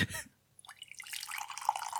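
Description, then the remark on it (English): Coffee dripping: a brief rough burst, a short pause, then quick watery drips and gurgles that build into a steady, fairly loud trickle, with no one speaking. “I've got a caffeine hobby. Listen.”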